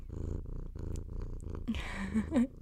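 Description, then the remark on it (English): A male pet cat, just picked up by its owner, purrs loudly in steady rhythmic pulses. Near the end the purring gives way to some rustling and a couple of brief squeaky chirps. “Let's see how much noise he makes. Wait, purring ASMR?”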